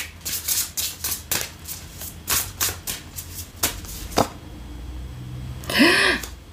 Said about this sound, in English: A little shuffling ASMR.